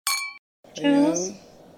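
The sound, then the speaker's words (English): Two martini glasses holding a champagne cocktail clink together once in a toast, bright, with a short ringing tone that fades quickly. A voice follows right after the clink. “Cheers! Is the Vampire Kiss Martini. Cheers.”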